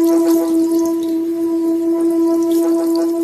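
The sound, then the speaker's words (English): A water-filled singing bowl is rubbed, its steady ringing tone humming throughout while the water, churned from smooth waves into a roiling mass, fizzes and spatters with a dense, crackly sizzle of tiny droplets, fairly loud, with no voices. “More and more energy can be put into the rubbing, changing the smooth, symmetrical waves into a roiling mass of water, fizzing with droplets and chaotic waves.”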